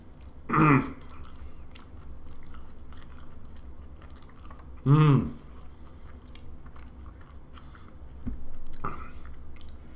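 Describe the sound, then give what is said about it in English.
Someone chews a spicy tortilla wrap filled with homemade veggie ground beef, egg white, fresh jalapeno and scorpion pepper, with three short, louder bursts of biting and mouth noise spaced several seconds apart over a steady, quiet background of soft chewing. “Egg white, fresh jalapeno, scorpion pepper. It's wrapped in a tortilla.”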